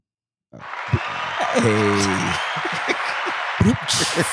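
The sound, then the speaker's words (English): Applause starts abruptly and continues steadily as a dense wash of clapping, with a few sharper claps standing out and a brief voice calling out partway through. “That's such a condescending applause.”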